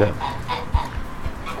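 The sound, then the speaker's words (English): Chickens and roosters cluck in a steady run of short, overlapping calls in a barn on a farm, moderately loud, with a few dull low thumps and no one talking. “So these roosters are used to you?”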